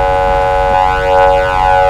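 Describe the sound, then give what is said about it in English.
A police car horn in a video game blares in one long, unbroken honk to cancel a chase, a loud, buzzy, steady tone that holds for about two seconds with no voices over it. “Stop honking, please. It's annoying.”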